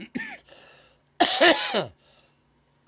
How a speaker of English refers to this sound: Still got this cough a little bit, hacking up that phlegm. Yeah, it's gross, I know.